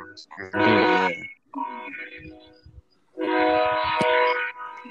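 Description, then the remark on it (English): A passing train blows its horn in two long, loud, droning blasts separated by a short gap, with rumbling and a voice faintly audible in between. “Yeah, you guys can hear a fucking train passing by.”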